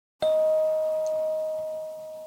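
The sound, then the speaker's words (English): A single chime is struck for a listening exercise in which listeners raise a hand when they can no longer hear it, producing a clear, steady mid-pitched ringing tone that sustains and slowly fades out over a couple of seconds, with no voices. “And raise your hand when you can't hear the sound anymore.”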